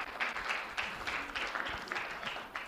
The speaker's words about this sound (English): Let's clap for her.